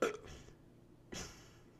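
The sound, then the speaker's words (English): A short, feeble burp sounds, followed about a second later by a brief breathy huff. No one speaks, and the background is otherwise quiet. “It was a shitty burp.”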